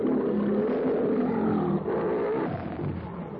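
A lion, Numa, roars furiously in one long, loud, rumbling snarl, continuous for several seconds, harsh and guttural with no pauses, no other sounds around it, as Tarzan attacks it from behind with a knife.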